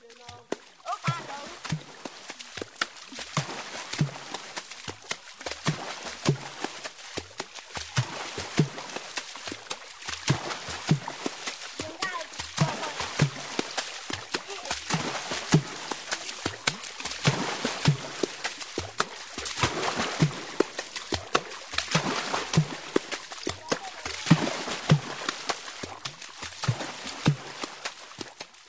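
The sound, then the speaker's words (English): Water drumming by the Baka people of Cameroon: hands slap and scoop the water's surface in a fast, steady, interlocking rhythm of splashy, hollow thumps that keeps going without a break, with faint voices now and then. “Going back to the Baka people of Cameroon, they use water as a percussive instrument.”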